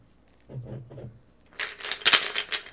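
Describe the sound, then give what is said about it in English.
A soft low thump or two, then a coin drops and clatters, with bright metallic ringing and a few quick rattles before it settles. No one speaks. “Is that a nickel?”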